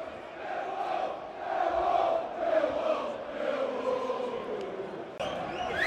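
A dense roar from a large football stadium crowd as both teams come out to the centre of the pitch, steady and loud throughout, with swelling murmurs and shouted chants blending together, and a sharp lift in noise near the end.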